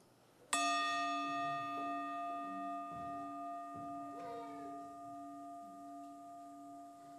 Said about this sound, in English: So I try to begin most of my days with a time of meditation, quietness, contemplation, prayer. Often my wife and I are together. We started, as people have done for centuries, with a sound, a bell, a gong.